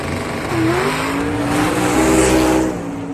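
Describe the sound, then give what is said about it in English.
A go-kart's small engine revs hard at full throttle, its buzzing whine climbing in pitch and holding steady over a rush of loud, continuous mechanical noise, with no one speaking. “Then with a burst of speed, he passed him. His go-kart was so fast, he nearly lapped the other drivers.”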